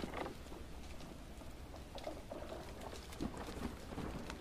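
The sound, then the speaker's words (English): Light, steady rain that is letting up patters faintly with scattered drops striking a surface over a low rumbling background, no voices present. “The rain was letting up now.”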